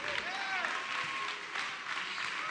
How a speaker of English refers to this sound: Come on, somebody clap your hands right now. Somebody shout, God has more.